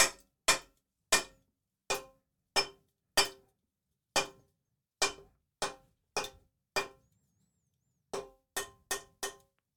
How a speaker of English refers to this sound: There's no purpose to this bit. I'm just banging a can on the side of the desk.